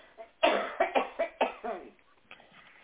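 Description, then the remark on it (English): A person coughs in a rapid fit of about six harsh coughs in quick succession, then a brief quieter pause with a faint trailing sound. “I'm allergic to my cat. And I adore her. And she makes me cough.”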